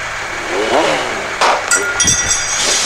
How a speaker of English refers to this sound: One, start your engines. Truck, start your engines.